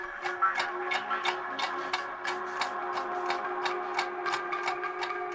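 Steady clock-like ticking clicks repeat about twice a second over a sustained musical tone and pad, crisp and upfront in an electronic music track, with no voices.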